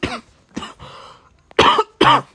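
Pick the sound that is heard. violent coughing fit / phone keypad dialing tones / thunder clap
violent coughing fit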